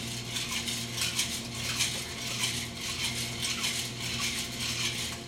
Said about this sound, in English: So we're switching gears. We're actually here at the bar, so you're gonna hear some clinking and shaking.